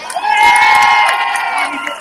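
A crowd bursts into a loud, sustained cheer for a team member being recognized and given a gift, a dense wash of many high voices shouting and whooping together for about two seconds with little variation in intensity.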